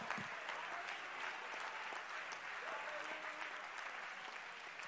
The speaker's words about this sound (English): In Jesus' name, clap your hands right now unto the Lord.